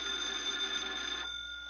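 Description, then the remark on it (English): A telephone bell rings on a detective's desk at local police headquarters with a bright, rattling trill for just over a second, then cuts off abruptly, leaving a faint hum. Alone, no voices. “Detective Harry Parker is at his desk when the phone rings.”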